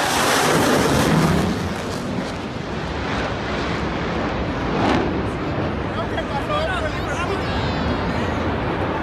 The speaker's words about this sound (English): That's a little bit of reheat from the EA-18G growler.